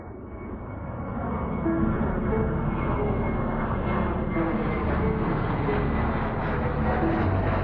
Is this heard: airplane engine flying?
yes